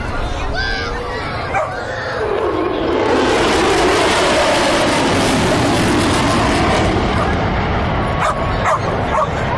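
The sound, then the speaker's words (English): A dog barks and yips excitedly, then a loud roaring F-35 jet rushes overhead at Strand Park along the Strand in North Queensland, swelling and nearly burying the barking under its noise. “And the dog's loving it.”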